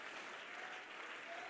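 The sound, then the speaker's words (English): An audience, standing on their feet, claps their hands together in a dense, continuous wash of applause, steady and fairly loud throughout with no distinct individual claps standing out. “Come on, are there any altar builders in the building that you'll stand to your feet and clap your hands and say, I'm going to build a church.”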